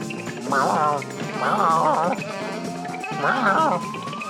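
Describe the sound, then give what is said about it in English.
A saxophone solo wails over a steady backing track in three bursts of bending, vibrato-laden notes, with short pauses between phrases and one long sliding tone. “Crazy saxophone solo.”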